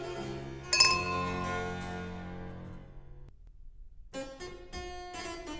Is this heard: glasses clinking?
yes